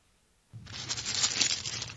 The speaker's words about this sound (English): Sorry, it's a paper.